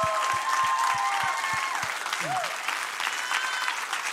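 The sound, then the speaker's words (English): A church audience applauds steadily for their pastor in a dense wash of clapping, with a few whoops and cheers rising above it, and a brief voice breaking through partway. “All right, that's enough applause.”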